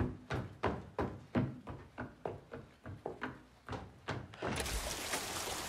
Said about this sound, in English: You can't leave. It's raining.